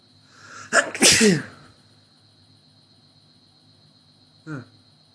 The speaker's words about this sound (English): I sneeze.